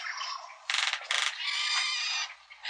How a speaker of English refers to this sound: The queerest of the American cuckoos, the roadrunner of the Southwest, can give an almost dove-like coo. And can rattle his bill like this.